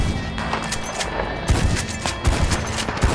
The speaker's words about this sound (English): He raised his nickel Winchester. The suicide king collected his pot. And this was the day the earth died screaming from the rapid fire shots.